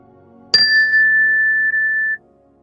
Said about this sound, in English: We'll begin the meditation with a ring of the chime and end the meditation with a ring of the chime.